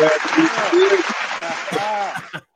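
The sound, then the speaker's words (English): A burst of clapping applause, dense and steady for a couple of seconds before cutting off abruptly, with excited voices calling out over it. “Clap it up.”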